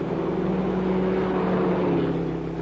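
A steady, loud engine drone of two cars, one a black Mercury convertible with a natural canvas top, speeding well above the legal limit along a highway about 3 miles north of the boundary, with a low humming tone holding even throughout and no voices.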